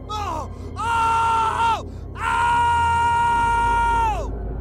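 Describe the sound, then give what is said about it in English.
A woman's brief pained cry leads into a drawn-out anguished wail of excruciating pain, then after a short gap a man lets out a long, loud, sustained scream of horror over a low background rumble. “The sound of a woman in excruciating pain, then sudden silence. This was followed by the sound of a man screaming out in horror.”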